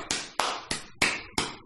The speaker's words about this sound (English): That's why I think you guys have a great model, a great idea, but overall, you're missing the biggest piece, and that's the prospective revenue opportunity, which is why, Gareth, you're getting a golf clap.